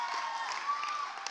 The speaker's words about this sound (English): Who is that clapping?